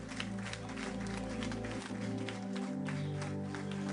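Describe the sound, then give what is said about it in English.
A church audience gives the Lord a standing clap offering, clapping steadily in a dense, continuous wash of applause, with sustained organ or keyboard chords holding underneath throughout the four seconds. “Now, I think the Lord deserves a standing clap offering for that.”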